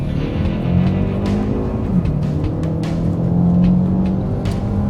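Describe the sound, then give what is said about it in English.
A car's engine hums for several seconds, a steady low drone with a slight swell near the end as the vehicle moves past. No one speaks. “Okay, as soon as this car goes by, if you want to just follow him out, that's lovely.”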